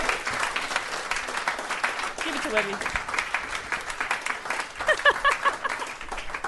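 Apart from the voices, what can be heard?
applause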